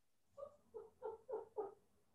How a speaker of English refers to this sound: Is that your dog? It is. He's like, there's another dog on the other side of the door and he like wants to play. So you'll hear him.